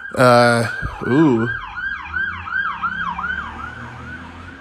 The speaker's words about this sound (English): You know, really, most of the time that cops in my area turn on their sirens, it's just to get through red lights. It's either that or somebody OD'd, and it's really just those two.